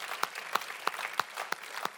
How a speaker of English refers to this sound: It's a little bit of a hesitant clap because I know some of you realize that clap's going to cost you something. It's like, I'm not sure I want to clap here.